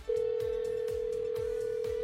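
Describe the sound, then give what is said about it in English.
A steady telephone ringing tone on an outgoing call to a man holds for about two seconds, loud and clear, over a rhythmic background music bed with thumping low beats. “All right, we're going to call him up.”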